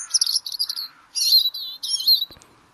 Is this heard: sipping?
no